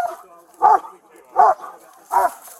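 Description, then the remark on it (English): A police K-9 dog named Red barks three times in a steady, evenly spaced rhythm, each bark loud and short, with quiet background noise in the gaps between them. “That's a good dog!”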